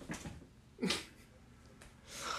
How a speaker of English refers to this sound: Sorry, we got a cat in the room.